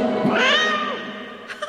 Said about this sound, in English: An Irma meow at the end.